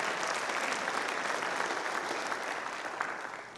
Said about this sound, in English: Come on, give yourself a big hand clap for that.